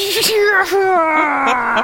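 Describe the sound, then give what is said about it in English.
A single voice imitates booing with one long, steady, moaning "boo" that slowly sinks in pitch across two seconds, loud and alone without other talk. “gonna put a booing in the background right now.”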